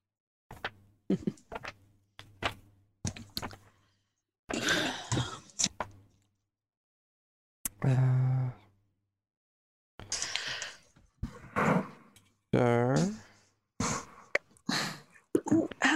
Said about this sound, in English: Well, I guess while we have a pause, I might lift up my chair again.